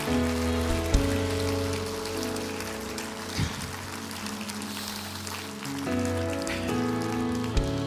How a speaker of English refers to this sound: Come on. Clap your hands, man. God is awesome.